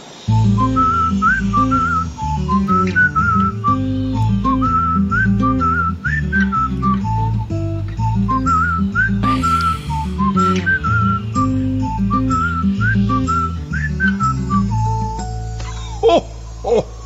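Santa whistles a bright, bouncy melody in his grotto at the North Pole over a steady backing track, the clear high notes hopping up and down in a quick rhythm for the whole stretch.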